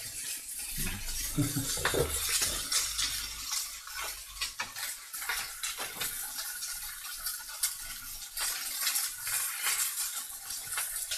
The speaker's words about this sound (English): Nice sizzling. That's some good ASMR.